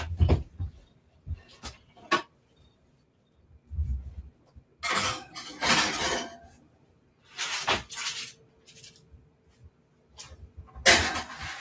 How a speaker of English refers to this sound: I'm just going to put these in my oven.